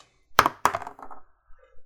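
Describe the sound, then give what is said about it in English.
Dice rolled for a death saving throw in a tabletop role-playing game hit a hard tabletop with two sharp clacks, then skitter and rattle briefly in quieter bounces before settling into near silence. “I've been rolling terribly.”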